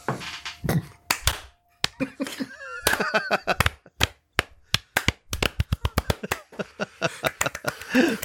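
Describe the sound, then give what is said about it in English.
Sharp hand claps made to synchronize audio, scattered at first and then coming faster in a quick, uneven burst toward the end, loud and crisp, with a bit of voice murmuring between the early claps. “All right, synchronize your claps.”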